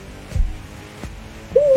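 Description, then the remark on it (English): An owl hoot sound effect cuts in loudly near the end, a single clear tone following a few soft low thumps in an otherwise quiet, wordless stretch, marking the owl Kree flying in to make an attack during a game. “The owl goes in.”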